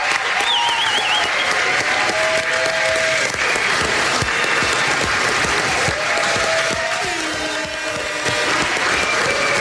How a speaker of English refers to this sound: Stand up and give him the applause that he deserves.